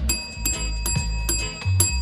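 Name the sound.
bell being rung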